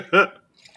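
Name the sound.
sneeze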